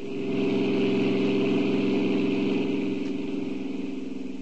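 A car engine runs steadily, a continuous low droning hum with a slight rhythmic pulse, holding an even loudness throughout with no voices.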